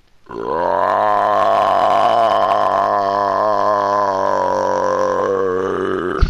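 A loud, drawn-out belch rumbles, sustained in one long croaking stretch for about six seconds, with no talking around it.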